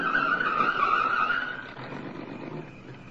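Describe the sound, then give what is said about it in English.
A car approaches and skids to a stop, its tires letting out a loud, drawn-out screech for over a second before the noise drops to a low, steady engine rumble. “The answer to that's in the car now approaching.”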